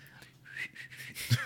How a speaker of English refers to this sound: I gotta wipe my whistle to whistle. There we go.